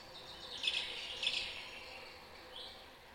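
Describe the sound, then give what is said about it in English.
A cuckoo-call alarm tone plays quietly, two brief high chirping bursts about half a second apart, followed by a fainter trailing chirp, with no voices. “I want to hear the cuckoo”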